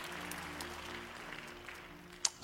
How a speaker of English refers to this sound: Clap your hands. Take your seat.